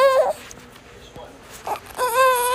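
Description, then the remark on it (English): A newborn baby cries in two loud wailing bursts, one at the start and another near the end, with a quieter pause between and no talking. “Oh, you hear my baby. My newborn.”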